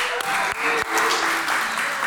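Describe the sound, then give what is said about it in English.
A crowd applauds a man called up to read for them, with steady, dense clapping, the sound full and sustained throughout, with a faint voice or tone lingering briefly beneath the applause. “If you didn't applaud him, you're reading next week, all right?”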